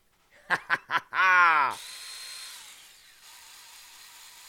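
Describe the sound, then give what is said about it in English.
A battery-powered TacRite mini chainsaw buzzes in three quick bursts, then revs into one longer, louder whine before cutting off, leaving a soft fading hiss. “Ladies and gentlemen, the TacRite Mini Chainsaw. This thing is the bomb.”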